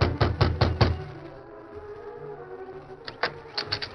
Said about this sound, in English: Perry knocked on the door of the cabin.